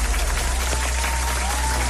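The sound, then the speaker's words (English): A crowd cheers and claps steadily for a caller from Cork on the Today FM radio quiz Music Master, a dense wash of applause holding at a loud, even level for the full two seconds with faint voices mixed in. “But if she is or isn't, give her a cheer.”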